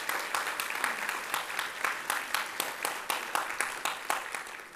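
An audience applauds steadily, a dense wash of many hands clapping with sharp individual claps popping through at a brisk, irregular pace, sustained at moderate volume with no voices.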